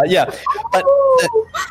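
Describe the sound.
A human voice imitates deep, guttural wolf sounds, with a few rough yelps leading into a short, drawn-out howl, fairly loud, with no other sounds around it.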